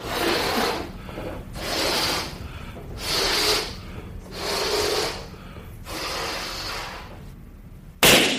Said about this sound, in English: Ed conducts a quick demonstration to prove just how quiet it is, blowing up and popping a balloon in the hallway outside the chamber.